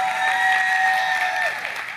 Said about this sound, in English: Oh, thank you for the three claps.